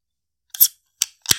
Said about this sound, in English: This is in a 16-ounce can. It's called the Citra Bomb 1. This is carbonated water, citra hops, organic white tea, and citric acid. So let's bust this one open.